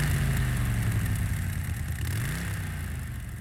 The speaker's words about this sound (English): Richie asked while Fonzie started the engine.